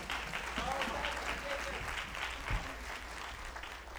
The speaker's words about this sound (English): I don't know about you, but that's something to give God a hand clap for. Amen.